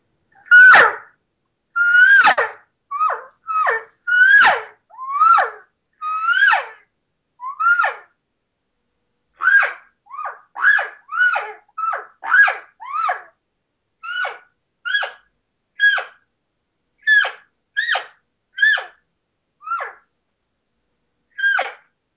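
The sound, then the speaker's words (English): Around two dozen short, reedy cow calls blown on a Contender single-reed latex call, each a brief nasal mew, some sliding up and others dropping in pitch, delivered in an irregular series with no talking. “Very easy read to blow, just that one single piece of latex, but you can use it for everything, cow calling, bull sounds.”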